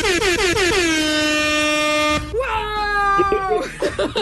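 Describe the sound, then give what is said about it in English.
A truck air horn blares loud: a few quick opening toots swell into one long sustained blast, then a second, shorter honk, with choppy bursts of sound at the end. “I honk for little kids to go by”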